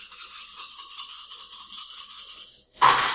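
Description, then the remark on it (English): A handful of many dice rattle steadily with a bright, gritty shaking for a few seconds, then break into a short, louder clatter as they tumble out, rolled for a medicine check. No one speaks. “I like the sound of that many dice.”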